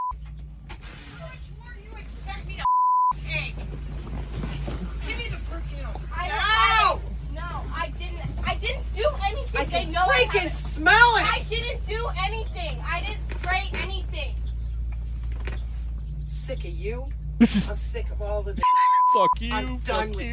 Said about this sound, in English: Now, I couldn't find the unedited, so we're going to have to deal with the beeps.